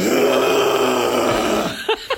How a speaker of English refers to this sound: Sorry, I should hit the cough button when I clear my throat like that.